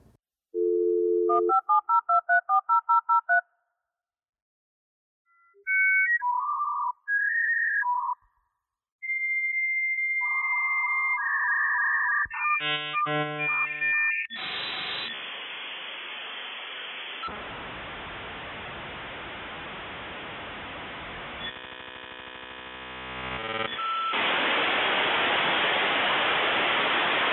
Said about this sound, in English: if you can begin the synopsis with the sound of a dial-up connection, that would be great. Insert here.